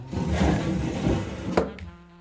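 A pull-out drawer where collected organs are kept slides open with a low wooden rumble and scrape lasting about a second and a half, ending in a brief bump, then a quiet settling sound.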